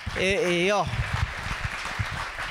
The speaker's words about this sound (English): So please give them one more round of applause.